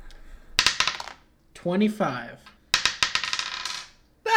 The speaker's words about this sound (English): He rolled a D8 and a D6, both of which landed on 1, and then, like, the remaining 4 came from his modifier.